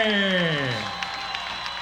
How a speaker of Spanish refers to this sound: Un fuerte aplauso en el décimo Día Nacional de la Salsa